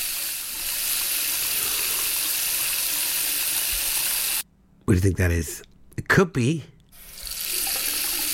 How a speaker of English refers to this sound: It could be something sizzling, but it's not. It's a tap. It's a tap running. It's a faucet tap, yeah.